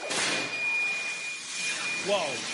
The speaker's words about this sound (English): The school's secret weapon called hot zones. Exploding smoke cannons hidden in the ceiling. Cops can deploy them in an instant.